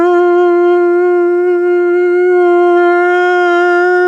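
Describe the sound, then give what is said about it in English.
A voice holds a loud, sustained wail for about four seconds, imitating an air raid siren. The tone is buzzy and steady, with only slight wavering in pitch, and nothing else is heard. “Wow, that sounded kind of like an air raid siren.”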